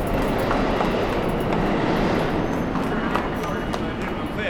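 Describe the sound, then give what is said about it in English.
A subway train rumbles loudly and steadily through a station, a dense roar with faint metallic clatter, while indistinct voices murmur underneath. “I'm going to the subway.”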